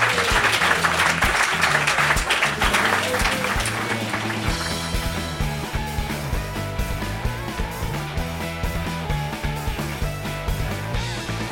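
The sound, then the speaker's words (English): A crowd claps and cheers for three guests in a dense, steady burst of applause, which soon gives way to loud upbeat music that carries on to the end while the clapping fades beneath it. “Please give a big round of applause for our three guests.”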